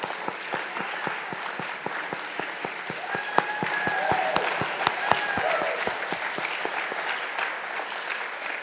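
A room full of people claps steadily for several seconds to thank someone for their work, a dense patter of many hands with a few sharper individual claps standing out, with no speech over it.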